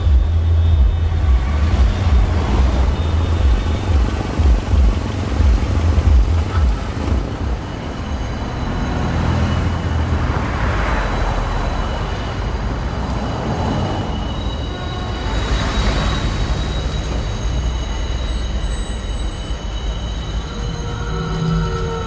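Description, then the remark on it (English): Dense New York City din with trains rumbling and clattering, wheels squealing over a steady roar of traffic, loud and continuous throughout with no voices. “And that New York is hyper-realised or stylized. It's overwhelming.”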